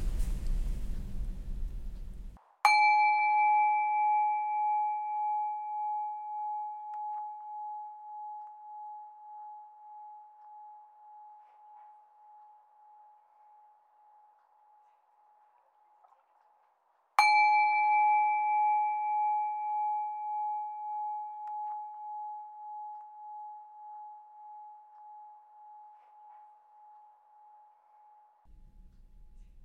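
A meditation bell is struck twice, each strike ringing out with a clear sustained tone that slowly fades away over about fifteen seconds, heard alone with no talking.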